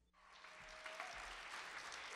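An audience bursts into applause, a dense, steady crackle of many hands clapping that swells quickly and holds strong without a break.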